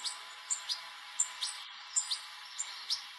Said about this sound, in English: Can you hear it? This video is nearly an hour and a half long. and it's just different birds tweeting, and they come down and sit down on this branch,